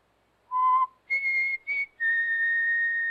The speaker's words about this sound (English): I just whistled. That's all.